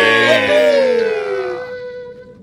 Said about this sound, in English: And so this like sound just plays, like just people just like, you know, voices cheering and confetti blasting.